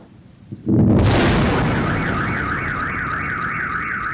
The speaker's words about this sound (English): Our CNN team on the ground witnessed Ukrainian air defenses firing up into the sky and a loud explosion that rocked the city.